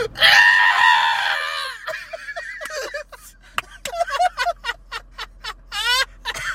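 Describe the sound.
A voice imitates a long, wailing scream that mixes a whale-like moan with coyote-style yips, starting as a loud sustained cry and breaking into a rapid string of short, rising and falling yelps.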